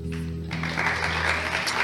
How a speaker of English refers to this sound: Wow, I wasn't expecting a round of applause. That should be saved for all of these wonderful folks up here.